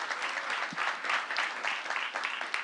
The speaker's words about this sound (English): I appreciate that Tiger Woods golf clap. That was awesome.